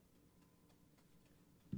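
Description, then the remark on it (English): A game clock timer, just reset, ticks steadily at a regular pace, soft, with no one talking, and a short low thump lands right at the end. “Let me reset the clock real quick.”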